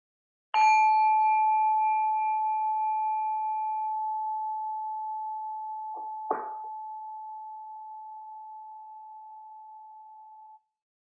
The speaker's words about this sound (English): We'll begin our meditation with the sound of a bell.